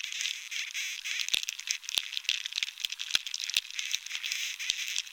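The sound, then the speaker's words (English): Bark beetles drilling and breeding inside a moderately infested, drought-stressed pinyon pine, a steady high hiss scattered with dry crackles and several sharp, irregular clicks. No voices. “Here's Dunn's recording of a moderately infested tree.”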